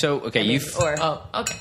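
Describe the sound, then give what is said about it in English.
A spoon clinks against a mug as tea is stirred: a few quick, bright metallic taps in an irregular rhythm, with some voice sounds mixed in. “I'm just going to stew my tea.”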